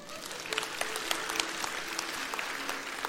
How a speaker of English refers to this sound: That's right, you can clap for that.